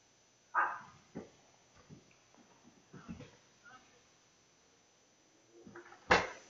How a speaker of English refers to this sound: Got the guard dog, man.